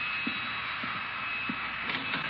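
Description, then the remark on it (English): A vacuum cleaner, used by Bertie to vacuum the hall of a house in January, runs with a steady, unbroken whirring drone and a thin high whine, while soft low thumps recur about every half second beneath it. “Oh, Bertie's using the vacuum cleaner.”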